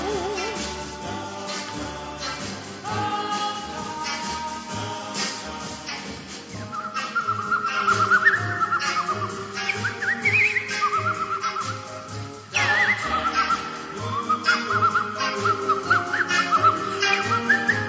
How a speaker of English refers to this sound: I think she's actually whistling in that. That'd be the best part of the song.